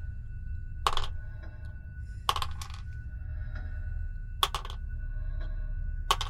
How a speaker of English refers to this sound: That's a lot of dice